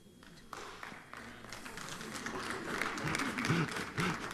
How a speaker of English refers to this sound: Somebody's clapping over here, but they're like, I'll never do it, but that is a great idea.